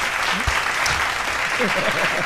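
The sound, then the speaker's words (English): An applause sound effect: a burst of steady crowd applause, dense and loud throughout, with faint voices murmuring underneath. “Get on the applause.”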